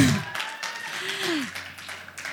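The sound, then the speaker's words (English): A crowd cheers and claps in a steady wash of noise, with a single whooping voice sliding downward in pitch partway through. The audience is cheering for a parent panel. “And each, yeah, you can cheer.”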